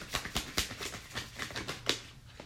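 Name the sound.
shuffling tarot cards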